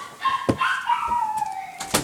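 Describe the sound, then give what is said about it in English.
Dogs barking, two sharp barks about a second and a half apart with a thin, drawn-out whining tone running between them. “I'm sorry, there's dogs barking.”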